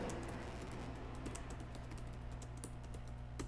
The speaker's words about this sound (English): You're typing and you're trying to hit O and you keep hitting P.